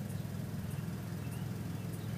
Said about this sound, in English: Can you guys hear it? Can you hear it? It's really fucking noisy over here today. Today, huh? Wasn't noisy until this fucking car pulled up over here. I don't even know what the fuck they're doing.